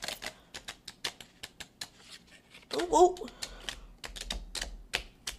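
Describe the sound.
Crisp, rapid snapping of a new deck of playing cards being shuffled, fairly loud, with a short burst of riffling. A voice briefly exclaims partway through.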